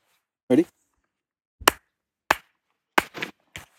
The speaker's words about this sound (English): Yeah, I'll clap.